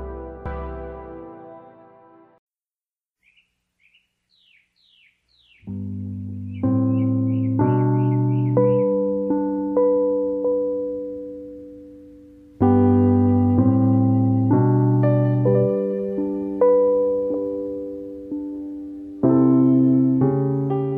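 A gentle instrumental arrangement of a pop song for children, with soft, ringing melody notes over steady bass chords, preceded by a brief pause and a few light bird chirps.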